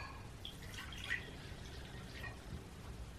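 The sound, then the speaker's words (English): Water trickles and splashes into a bowl as it is poured for an altar, in a steady pour, with a few brighter drips and plinks over a soft continuous wash; no one speaks. “Now you're going to need either a bowl, like and then you want to add some water. So I have some water here just so I can show y'all.”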